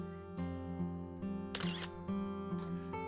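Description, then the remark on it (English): A camera shutter clicks with a sharp mechanical snap as a group photo is taken, set over a steady droning musical hum, with a couple of softer clicks around it. “And the photo's taken, and then we are kind of flashed back into our current time.”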